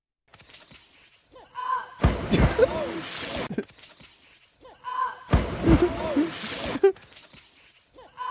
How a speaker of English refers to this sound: And it sounds like a cannonball is hitting the water, dude. That woman is so large, dude. The way she fucking hits the water, dude.